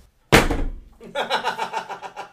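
A single loud, sharp slam of a phone being slammed down, with a quick decaying rattle, followed by a person talking.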